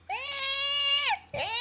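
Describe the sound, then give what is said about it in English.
A person imitates a Shiba Inu scream: one long, loud, high-pitched wailing cry lasting about a second, bending downward at the end, then a brief gap and a second cry starting. “The scream is so hard for Shibas.”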